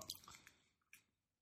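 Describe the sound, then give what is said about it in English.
Soft, wet, squishy chewing of a vanilla bourbon cupcake with vanilla frosting, a few irregular mouth noises in quick succession, fairly faint, with no one talking. “Okay, once again, sorry if we're making extra noise. We have to, because we're eating.”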